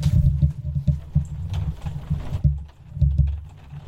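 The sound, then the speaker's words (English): A December storm in England heard through a window: a steady low roar of wind with scattered sharp taps and patters, like rain striking glass, loud and continuous with no voices. “Do you think the microphone's picking up the sound of that storm?”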